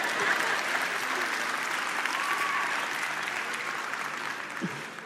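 A crowd applauds steadily throughout, a dense, even wash of clapping from many hands that holds at a fairly constant level and tapers slightly near the end.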